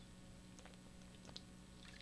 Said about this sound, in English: So I've got to be careful now because I got to take a sip of water, but I can't use my messed up arm.